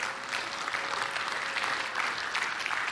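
An audience applauds steadily, a dense wash of many hands clapping at an even, moderately loud level for the whole three seconds, with no voices standing out.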